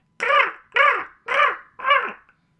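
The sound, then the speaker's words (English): Crows caw four times in a steady, evenly spaced series, each call harsh, raspy and loud, with short silent gaps between and no talking. “One with folks who can tell the difference between a raven and a crow.”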